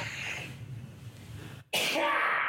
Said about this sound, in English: Let's pause so I can sneeze. No, just sneeze. Allergies are great right now. Just sneeze.